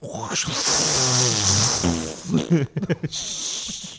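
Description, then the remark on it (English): A voice imitates a toilet flushing: a hissy, gurgling rush with wavering low tones for a couple of seconds, then a few sputtering bursts before the hiss returns. “Oh, that was totally the sound of the toilet.”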